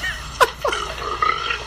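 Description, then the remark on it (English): A long, gurgling, loud burp from a man, with a sharp opening pop followed by a drawn-out, wavering belch lasting over a second. No one speaks. “His burp is so gross.”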